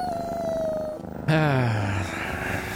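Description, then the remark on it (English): Cats meow in overlapping, drawn-out cries: a thin sustained call gives way to a loud, downward-sliding yowl that trails off, with no talking. “Thank you, Friskies in the Alley Cat Choir.”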